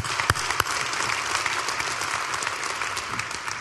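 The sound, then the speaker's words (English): Steady audience applause at a Diocese of Columbus men's conference, thanking the volunteers, fills the whole stretch: a dense crackle of many hands clapping at an even loudness, with a couple of sharper claps standing out near the start. “So let's give them a round of applause and thank them.”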